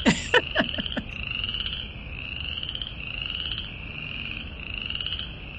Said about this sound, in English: I'll play a clip for our listeners of being serenaded by the frogs there, which was actually pretty lovely